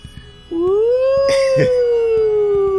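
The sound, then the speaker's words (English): The Column City alarm system, a loud howling alarm that wails up in one long sustained tone, rising at first and then slowly sagging in pitch, with a couple of brief noisy bursts partway through. “Is that the sound of the Column City alarm system? It sure is.”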